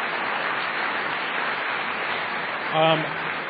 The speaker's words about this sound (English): I just want to give a round of applause to everybody who got up and asked a question.